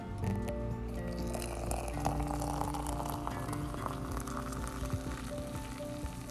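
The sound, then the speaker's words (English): Coffee is poured from a little teapot into a cup at home, a steady stream pouring and burbling for several seconds, a continuous splashing, gurgling sound with a rising fill tone, with no one speaking. “This is the best way to drink a nice, delicious, delectable cup of coffee. Right from your little teapot, right from your home.”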